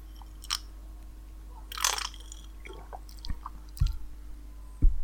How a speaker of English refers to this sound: I suppose I should take just a delicate little sip, but that seems sort of not in the spirit of the thing. So I'm going to take a massive glug.